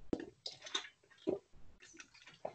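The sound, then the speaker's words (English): Air squeezes out of a plastic water bottle in a few irregular bursts of quiet crackling and squeaky hissing, with faint crinkles between them and no talking. “There's air coming out of the bottle.”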